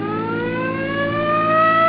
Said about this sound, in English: Come on, hit your siren.